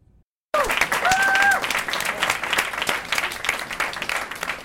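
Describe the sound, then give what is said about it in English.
An audience at Casa Nueva in Athens, Ohio, bursts into sustained clapping for artists who performed on the small stage, after a brief silence, with a couple of sharp rising whistles cutting through early on, the applause steady throughout. “Claps and whistles from the audience go out to the artists who were brave enough to share their art on the small stage at Casa Nueva.”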